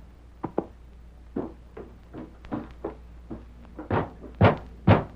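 Repeated knocking on a wooden door, starting as light scattered raps and building into heavier, louder thumps near the end. No voices, just the knocks against a quiet background.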